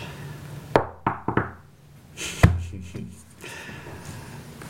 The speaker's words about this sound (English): Who's knocking? I'll knock.